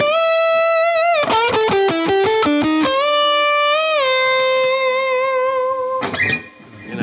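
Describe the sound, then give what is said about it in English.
A distorted electric guitar solo: a sustained note, then a fast run of rapidly alternating notes, landing on long, singing held tones with bright harmonics. Loud throughout with no talking. “It's great solo guitar for ballads and stuff, screaming ballads.”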